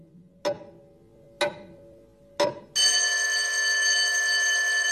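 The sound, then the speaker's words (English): Three sharp, evenly spaced clacks, then a loud electric school bell bursts into a continuous, bright metallic ring that holds steady to the end. No one speaks. “After the school bell rang, Oluanda took his crutches, stood up, and took a long, hard look at his head teacher.”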